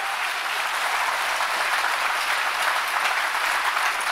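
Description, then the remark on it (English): An audience applauds steadily for the whole stretch, a dense, even wash of many hands clapping at a fairly loud level with no voices standing out. “Everybody clap.”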